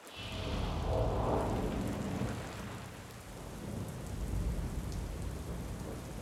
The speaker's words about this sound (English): I like the rain. I like watching the drops splatter against my windows. I like the cold breeze it brings, replacing the humidity.